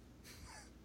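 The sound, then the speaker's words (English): A single soft sneeze, a short breathy burst of hissing noise lasting about half a second, with no talking around it. “Gesundheit.”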